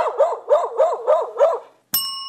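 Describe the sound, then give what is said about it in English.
A dog barks six times in a quick, steady rhythm, loud, followed after a short pause by a bright ringing chime. “Shaggy dog.”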